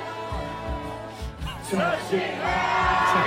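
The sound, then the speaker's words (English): A crowd in Ibiza cheers and whoops for a performer on stage over rhythmic low thumps, voices swelling louder halfway through into a sustained, enthusiastic roar with shouted, wavering pitches rising above the din. “He's getting the crowd going, give him that.”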